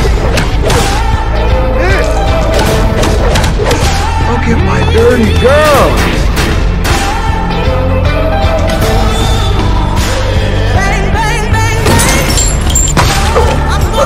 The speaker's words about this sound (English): I'm gonna shoot you right now! I'm Negan. Bang, bang, bang, bang!